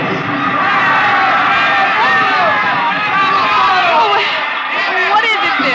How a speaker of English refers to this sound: stood on the edge of the yelling crowd